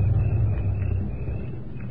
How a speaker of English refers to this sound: Wait. Car. Is it them? I think so.